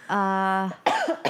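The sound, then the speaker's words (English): A short, steady vocal hum gives way to two abrupt, breathy coughs from a person, the second cough quick and clipped. “Am I the only one that coughs?”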